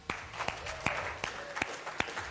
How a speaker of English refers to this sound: And let me ask this, by round of applause, let me ask this, okay? By round of applause, who here is the firstborn?